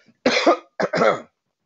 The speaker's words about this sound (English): But look, I promise y'all I'm healthy. I know it's the corona stuff going on. Don't trip when I'm coughing.